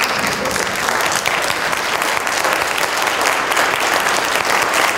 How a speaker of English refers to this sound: So if you can all join me in standing and giving them a round of applause.